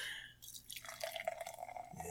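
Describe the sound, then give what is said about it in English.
Bock lager beer, 7.1% alcohol, pours steadily into a glass, a continuous gurgling splash whose pitch climbs slightly as the glass fills over a couple of seconds. “His Bock Lager. I'll be your Bock Lager anytime. All right. And the pour.”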